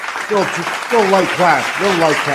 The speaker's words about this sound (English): What do you want to hear? You want to clap it up for them? Yeah, let, you know what? Let's clap it up for the fans. Let's go.